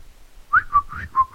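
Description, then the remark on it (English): A person whistles a quick run of about five wavering notes, fairly loud, with no talking over it. “What you should have done is whistled a Christmas carol.”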